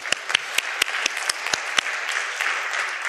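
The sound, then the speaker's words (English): A crowd applauds steadily, a dense wash of clapping with a few sharper, louder individual claps standing out in the first two seconds before settling into an even patter. “Give those folks a round of applause.”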